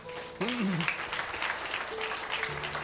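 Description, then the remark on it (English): A church audience applauds a woman who led the singing and testified to being healed after 15 years of pain. The steady, loud applause starts abruptly and keeps going, with a few voices calling out over the dense clapping. “Yeah, and we clap for great joy for her because 15 years of pain to be delivered.”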